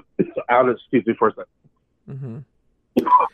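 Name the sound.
coughing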